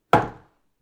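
A single firm knock on the wooden door of a room in the athlete's quarters, a sharp woody thud that rings briefly and fades within half a second, with no voices around it.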